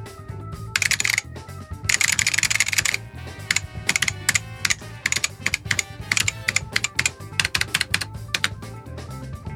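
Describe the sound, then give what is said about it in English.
Hard, uneven keystrokes clack on an old keyboard as someone finger-types, pecking in irregular bursts with short pauses, fairly loud with no voices. “You're pecking away. You're finger typing.”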